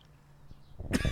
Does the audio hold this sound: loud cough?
yes